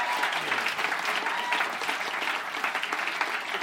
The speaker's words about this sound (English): A big round of applause. Thank you. Thank you, everybody.